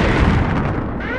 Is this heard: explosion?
yes